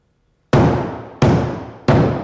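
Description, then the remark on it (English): Three loud, evenly spaced hammer blows, each a sharp full-bodied strike that rings and fades before the next lands, with no voices. “Somebody go up there and stop that hammering!”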